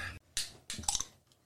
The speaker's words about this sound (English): Whoa. I picked that up good. Wait, so that doesn't count? That was loud. Yeah, but that doesn't. The opening of the can.